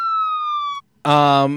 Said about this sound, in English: Got some sirens going on outside. They're getting awfully close.